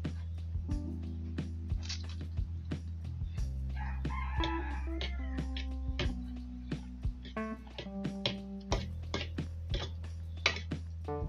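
A rooster crows twice, long and strained, over steady low hum and a scatter of sharp ticking clicks; nobody speaks.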